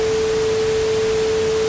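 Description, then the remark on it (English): Harsh radio static with a steady, piercing whine running straight through it, the squeal of two aviation radio transmissions blocking each other as a Piper pilot acknowledges an ATC descent instruction while another pilot, just switched from another frequency, transmits; loud and unbroken for under two seconds with no voices. “Unfortunately, another pilot switched over to the frequency from another frequency and immediately started transmitting”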